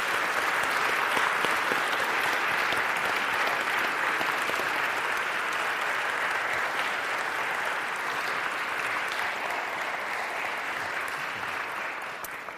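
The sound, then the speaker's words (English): Sustained audience applause, a dense steady patter of many hands clapping at an even loudness for about twelve seconds before easing slightly at the end, with no talking. “Let's give them a hand of applause for sharing.”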